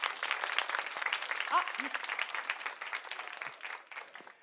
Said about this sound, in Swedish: Ge dem en till applåd.